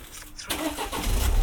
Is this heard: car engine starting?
yes